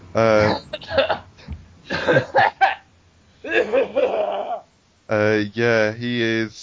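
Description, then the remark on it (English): A voice acts out a bout of strained, sputtering coughs as if coughing up blood, several short harsh bursts mixed with drawn-out pained groans, fairly loud with no other sounds around. “Maybe you can cough up a little bit of blood, probably.”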